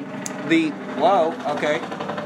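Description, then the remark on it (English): A truck drives past the building, its steady low engine rumble droning through the whole moment while voices talk briefly over it. “A vehicle passed by our building.”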